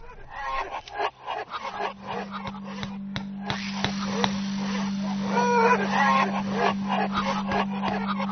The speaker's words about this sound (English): Oh, we've got the chickens very excited here.